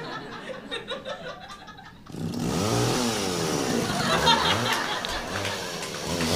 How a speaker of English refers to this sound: It is ridiculously easy to cut through the tree with a chainsaw. The saber-toothed chain screams through the wood and spits sawdust out of the deepening cut like snow in a blizzard.